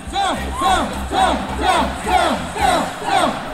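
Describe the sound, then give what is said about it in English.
A large crowd at a Groundhog Day celebration chants in unison, repeating the same loud, rising two-part shout about every half second in a steady rhythm across the whole stretch, with no single voice standing out. “There's fireworks. There's dancing. There's chanting.”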